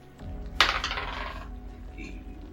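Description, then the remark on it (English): Dice rolled for a seek check drop onto a hard table with a sharp clack, then rattle and tumble briefly before settling within about a second. Fairly loud over a quiet hum. “Damn, dude, you gotta get a new dice.”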